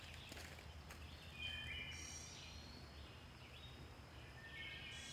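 Birds chirp and twitter outdoors during a walk against a steady hiss of background noise, with short high calls coming and going throughout.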